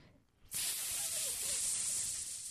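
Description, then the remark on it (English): A steady, breathy hiss starts abruptly and holds for about two seconds, loud, like a snake or air rushing from a tire; it sounds like a person making the hiss with their mouth. “Snake or an air out of a tire, whatever you want it.”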